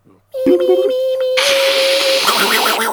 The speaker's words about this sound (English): The modem sound. Dial-up. Oh, you kids today, you don't even know.